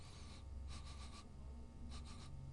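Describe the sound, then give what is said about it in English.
Breathy sniffing at a freshly opened bottle of soda in quick bursts: a short inhale, then a run of several rapid sniffs, a pause, and another cluster of sharp sniffs, with no talking. “So let's sniff the cork, as it were.”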